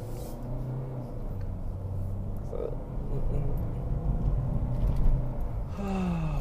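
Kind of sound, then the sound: vehicle, car driving on road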